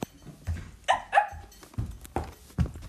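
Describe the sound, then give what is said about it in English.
A puppy lets out a quick series of high, yappy barks, four or five sharp yips spaced unevenly over a few seconds, fairly loud, with no one talking. “Come on, puppy. Let's go.”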